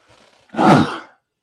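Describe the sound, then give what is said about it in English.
A single sneeze: a faint, breathy intake followed by a loud, explosive burst of air that fades out within about half a second, with no talking. “And there it is, my daily sneeze.”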